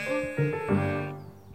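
A single drawn-out sheep bleat, fairly loud, with a wavering, nasal tone that rises in a couple of pulses before trailing off, with no voices around it.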